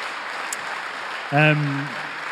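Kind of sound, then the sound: crowd, audience applause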